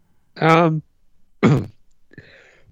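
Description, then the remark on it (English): A voiced, throat-clearing cough, followed a moment later by a second, harsher burst, then a faint trailing sound. No speech. “It was a bad time to cough.”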